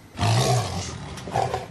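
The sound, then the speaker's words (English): A captive male Sumatran tiger in a cage lets out a deep, rumbling roar, loud, swelling in a single drawn-out burst before a shorter growl trails off at the end. “you're observing one of the captured Sumatran man-eating tigers in a cage”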